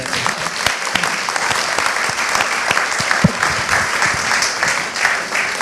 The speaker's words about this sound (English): Should we have another round of applause